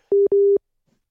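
A call-ended tone as the other person hangs up a video call: two steady electronic beeps at one pitch, the second longer than the first, sounding clearly on their own before everything falls silent.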